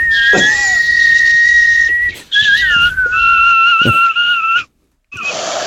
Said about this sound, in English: Did he whistle? Did he whistle the chorus?